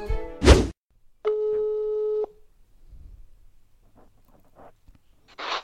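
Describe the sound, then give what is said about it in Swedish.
A single steady electronic ringing tone from an outgoing phone call to a friend, lasting about a second, preceded by a brief loud thump and followed by quiet shuffling and a short burst of hiss. “Det som kommer hända nu är alltså att jag kommer ringa upp en vän”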